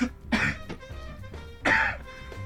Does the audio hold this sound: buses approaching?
no